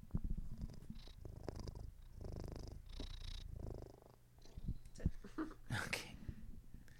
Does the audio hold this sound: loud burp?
no